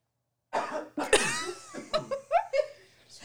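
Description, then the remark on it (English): A fairly loud fit of coughing: several harsh bursts in quick succession, the later ones shorter and raspier, with a faint laughing quality mixed in. “I got a cough.”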